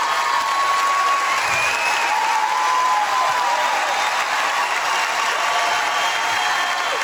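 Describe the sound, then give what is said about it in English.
Steady, loud applause from a large audience welcoming Mark Driscoll after he is introduced and asked to stand, a dense wash of clapping that holds at an even level throughout with no voices standing out. “I actually, we can't listen to all that applause because it goes on and on, like the love for Mark Driscoll.”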